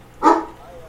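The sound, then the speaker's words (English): A single sharp dog bark rings out, fairly loud, then quickly fades into quiet with no one talking. “Shush, dog.”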